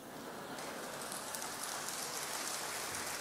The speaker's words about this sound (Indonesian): Kenapa Anda tepuk tangan? Tahu enggak artinya?